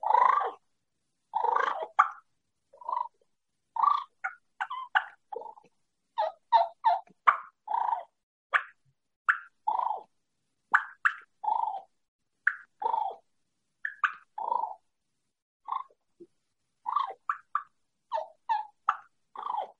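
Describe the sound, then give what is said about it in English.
A turkey call held in the mouth and worked with the end of the tongue imitates turkey clucks and purrs: a steady stream of short, soft clucks mixed with brief rolling purrs, fairly quiet, with no talking. “But let's go into cluck and purr and do a little bit for him.”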